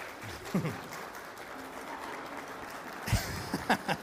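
An audience gives a man a round of applause for his help with a demonstration. The clapping is a steady, moderate round lasting several seconds, with a few brief voices and cheers rising over it.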